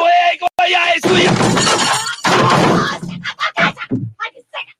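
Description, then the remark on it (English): Someone pounds on a malfunctioning machine whose clock keeps blinking: a few sharp knocks, then two long, loud crashing smashes with rattling metal, trailing off into a rapid series of smaller clattering bangs and clinks. “I would recommend you stop beating on the machine.”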